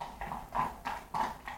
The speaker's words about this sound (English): Can you hear the horse outside?